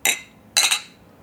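Two bright clinks of wine glasses of a 2016 wine touching in a toast on a balcony, about half a second apart, each ringing briefly before fading. Fairly crisp, with no voices.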